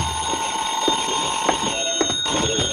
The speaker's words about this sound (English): I went back to my room and the phone was ringing.